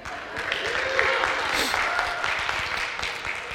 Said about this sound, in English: Who can cheer me on?